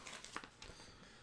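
A password is typed on a computer keyboard: a quick run of soft clicks, about five keystrokes in an uneven burst, fairly quiet, then a brief lull with faint background hiss and no talking.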